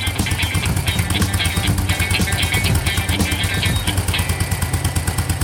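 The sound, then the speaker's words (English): A Yamaha SR single-cylinder motorcycle engine idles with a steady, loping thump and low rumble, its valves clattering rhythmically on top, continuous and fairly loud throughout. “Hear the thump and rumble of a crummy thumper.”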